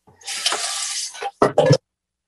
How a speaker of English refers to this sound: Okay, so I'm going to use a ladle and take some of my pasta and I'm going to dump it into my colander and then run the water over it because I really don't want to burn my mouth.